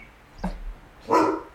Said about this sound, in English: Oh, is she a youngest? Yeah. So that's why she's barking.